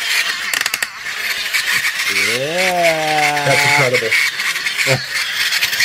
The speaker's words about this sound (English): And the engine... You hear that? The engine does not... Or motor, I should say, not an engine. Doesn't sound the best, but... No, that wants to die. But it walks. It walks straight, so...